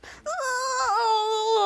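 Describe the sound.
A voice imitates a drawn-out scream of pain, a loud wailing cry that starts high, wavers, then slowly slides downward for over a second, mimicking Ray from Danger Force screaming after a robber sprays mace in his face.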